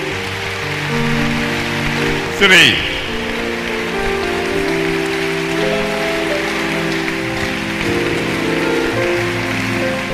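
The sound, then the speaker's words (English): A crowd at a convention claps steadily to encourage people coming forward, in a dense, continuous patter that sounds almost like rain, with a voice and sustained musical tones over it and one brief sharp burst early on. “Keep clapping, brethren.”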